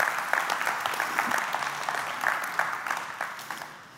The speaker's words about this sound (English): Nobody claps alone here. It's the rule.